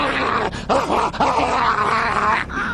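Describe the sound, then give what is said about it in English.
A recorded dog barking sound played by a Japanese train: loud barks and growls in a rough, continuous stream, broken by a couple of brief pauses, over a dense rumbling background noise. “This is what a Japanese train sounds like these days.”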